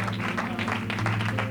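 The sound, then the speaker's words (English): A church audience applauds steadily and warmly to welcome a preacher to the pulpit, over a sustained low organ-like drone, the clapping dense and continuous throughout. “Let's give him a good Bendel welcome to this pulpit.”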